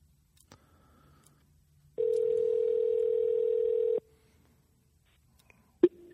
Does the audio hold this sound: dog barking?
no